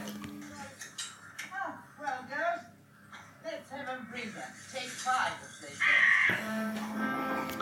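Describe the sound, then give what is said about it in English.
Crows caw repeatedly in a rough, overlapping series of harsh calls, moderately loud, ending in a louder, busier burst of cawing and noise. “I guess they had trained crows for this, didn't they?”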